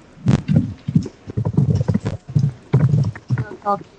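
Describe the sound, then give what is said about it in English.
Loud keyboard typing: a steady, irregular clatter of sharp keystrokes running throughout, with a brief voice sound near the end. “You should click the little mute button on your thing, so because your typing's kind of loud, no offense.”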